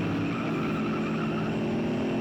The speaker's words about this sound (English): On their way to Chip Carmichael's house, another truck chased Buster Lee and Lars. This one, a cube van